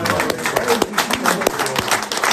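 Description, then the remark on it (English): An audience claps for the Lord after worship, a dense, steady burst of applause, sharp hand claps overlapping throughout with a few voices mixed in. “Let's just give the Lord a clap, eh?”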